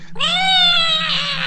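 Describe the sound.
A person voices the screech of a creature gored in her side during a dice-rolling game: one loud, sustained, shrill cry that rises slightly in pitch and turns raspy toward the end, with no other sounds around it.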